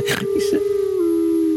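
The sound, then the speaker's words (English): A long, steady wolf howl holds one pitch for over a second, loud, with a couple of brief breathy bursts of other sound near the start. “Oh, a wolf.”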